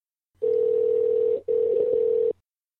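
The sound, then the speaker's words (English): A telephone dial tone hums steadily and loudly, broken once by a brief gap before resuming, with faint dialing blips mixed in, as a call is placed to Pete Singer. No one speaks. “All right, well, let's get PW on the phone.”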